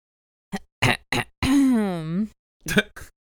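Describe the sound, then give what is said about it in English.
Someone sassily clears their throat in a few short, gruff bursts, then lets out a long, exaggerated voiced hum with a swooping pitch before one last rough clearing. “I was legitimately clearing my throat, but I felt like doing it sassily.”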